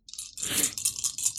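A brief, bright clatter of six dice tumbling and rattling together, a dense burst of hard clicks that swells and then scatters into a few lighter taps, with no voices.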